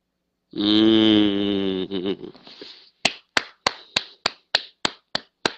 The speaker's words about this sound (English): I gotta give you the clap for that.